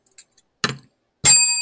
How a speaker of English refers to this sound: Okay. So first bell ringer.